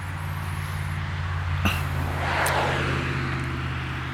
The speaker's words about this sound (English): In fact, just to take a pause, you'll be able to hear some traffic on the country road next to where I'm at the moment. Probably give you a different sense of the environment.